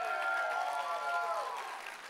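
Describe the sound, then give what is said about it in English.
An audience applauds steadily for a couple of seconds at a preacher's urging during an evening sermon, the clapping dense and sustained with a sustained tonal sound running beneath it, fading slightly toward the end. “Oh, you ought to clap right now, because we're going to have some fun.”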